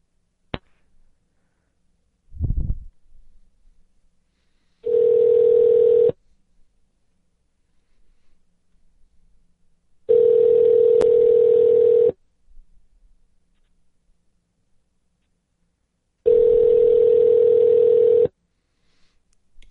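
A telephone line gives three long, steady ringback-style tones after a brief thump of handling noise, while calling a re-entered, corrected number; each tone about a second long with gaps of several seconds. No one speaks.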